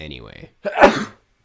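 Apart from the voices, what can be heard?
sneeze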